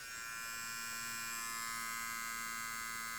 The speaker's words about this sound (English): I think you can hear that hum. I think you can hear that. Look, that's the nose trimmer.